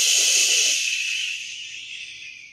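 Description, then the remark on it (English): A loud breath blows straight into the microphone as one long, airy rush that slowly fades over a couple of seconds. No one speaks. “They can hear you breathing.”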